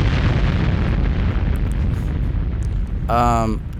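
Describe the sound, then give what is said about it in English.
A loud, deep explosion sound effect rolls on as a sustained, rumbling roar, heavy in the low end, before a voice briefly cuts in near the end. “Here's the explosion.”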